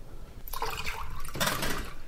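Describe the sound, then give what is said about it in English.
Water pours steadily into a measuring jug of milk for about two seconds, topping it with 250 milliliters of water, a splashy trickling stream with a brief bubbling surge partway through. No one speaks. “And now we top that with 250 milliliters of water.”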